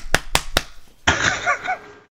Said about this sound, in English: And like, so I'm like slapping the crap out of my chest. And I'm like, man, I'm definitely going to cave something in one day.